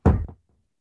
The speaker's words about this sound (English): Okay, there's a knock on the door. One second, I have to go.